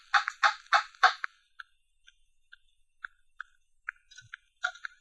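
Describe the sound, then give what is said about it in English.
An iron door knocker shaped like a dragon's head, on the door of a big, old-fashioned house, raps four times in a quick, heavy series of sharp metallic strikes, followed by faint ticking clicks and one more louder clank near the end. No voices. “The iron door knocker was in the shape of a dragon's head. I lifted it, rapped.”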